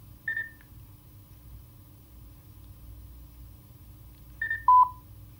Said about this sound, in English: Okay, and once you've heard those beeps coming out of the Mountbatten, you've now connected.